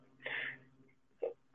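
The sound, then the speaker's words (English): A few short, harsh coughs: a longer rasping one, a brief second after a pause, then a sharp burst at the very end, with no talking. “Excuse me, still coughing.”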